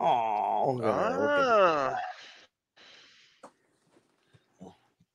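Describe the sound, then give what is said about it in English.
An 8-week-old female Labrador-Pitbull mix puppy whimpers in a high, wavering whine for about two seconds, then falls quiet apart from a few soft sniffs and snorts. “This right here is half Labrador and half Pitbull. She's 8 weeks old, and we just got her today.”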